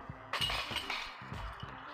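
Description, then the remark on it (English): A disc slams into disc golf basket chains on a 194-foot hole played downhill through woods across a valley: a sudden loud metallic crash followed by about a second and a half of bright, jangling chain rattle that slowly settles. “Bang chains!”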